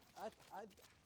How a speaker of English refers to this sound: Here's our dogs again.